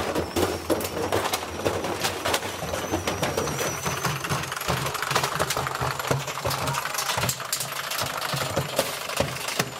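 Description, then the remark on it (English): A clothes dryer tumbles loose objects, sending a constant stream of loud clattering knocks and rattles over a steady low motor hum, continuous throughout with no one speaking. “Some of you get weird donations at camps, and now you know what to do with the dryer.”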